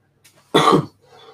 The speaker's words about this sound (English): Mainly because I'm getting to a point I can hardly get through my sentences without wanting a cough.